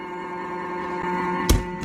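A portable washing machine drains with a steady, droning pump hum, broken by a dull thunk near the end and a softer knock just after.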